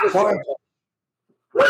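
animal, dogs barking at doorbell

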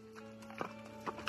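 animal, horse hooves clip-clopping

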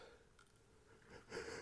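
human body sound, yawn

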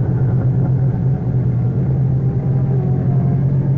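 vehicle, car driving away fast

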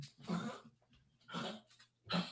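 animal, dog retching

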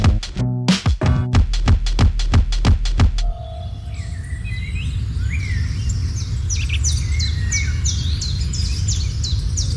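bird, birdsong

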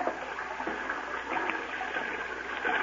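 nature, water lapping

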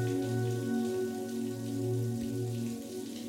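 nature, running water

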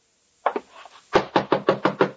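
household object, knocking on a door

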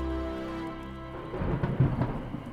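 nature, heavy rain falling

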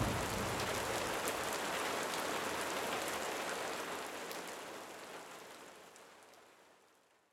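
nature, rain falling

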